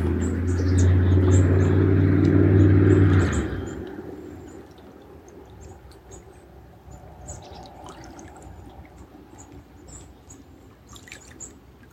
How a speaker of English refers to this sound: And the sounds of the vehicle.